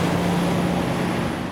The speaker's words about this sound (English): The sounds of a snow day in Metro Vancouver. Cars and buses struggling right across the city and on the North Shore.